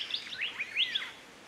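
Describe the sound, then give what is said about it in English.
A cockatoo calling on Gamilaroi country in inland Queensland, a quick run of high, sweeping chirps that rise and fall, fairly faint and close together, with no talking over them. “Cockatoo. A cockatoo. That's right.”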